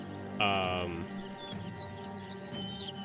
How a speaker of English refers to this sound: You guys are scaring the birds. Yeah, I can hear that, yeah. Tweet, motherfucker.